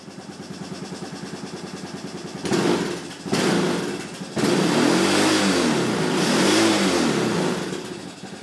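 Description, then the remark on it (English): The Honda 250 engine of a 2000 Honda Recon 250 ATV fires up by its electric start and chugs steadily, then bursts louder and revs up and back down twice in smooth, rising-and-falling swells. No one speaks. “And it's a Honda 250 off of my ATV. I have a 2000 Recon 250, and you could hear the little electric start there and all that good stuff.”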